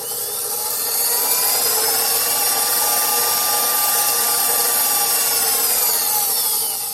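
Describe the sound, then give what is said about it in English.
A stand mixer runs steadily throughout, its motor giving a constant whirring hum with a slightly gritty, scraping texture as it works pastry dough of flour, cold cubed butter, salt, cold water and lemon juice, all added at once. No one speaks. “Some salt, and then cold water and lemon juice, all to the mixer. All at once.”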